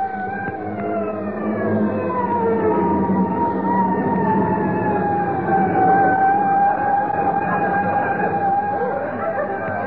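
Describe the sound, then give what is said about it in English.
A fire engine siren, responding to a fire, wails continuously for the whole stretch, its high tones slowly sliding in pitch over a low rumble of traffic and engine noise, holding steady and loud throughout. “Why, I could put out this fire with a handful of water just before those guys get here.”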